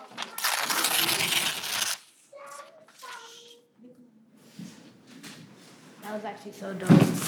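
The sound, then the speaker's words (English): A page of paper is torn in one long, loud ripping sweep, followed by quieter rustling and a child's voice talking. “I was ripping pages of paper.”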